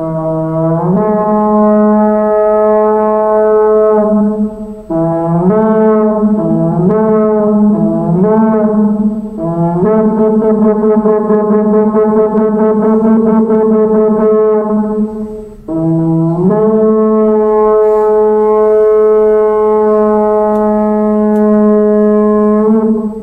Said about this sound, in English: Now, the Israelite nation, they knew that sound well. That's the sound of what we call a shofar.